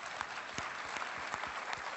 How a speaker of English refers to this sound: In fact, I'd love to know how many of you have been married more than 50 years? Wow, anybody more than 60 years? Yeah, let's clap for all the 50s and over. There you go.